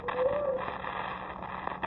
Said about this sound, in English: What was that? Whistle. Well, it's only 10 o'clock. Can't be the way freight, can it? Oh, I never heard of them being that early.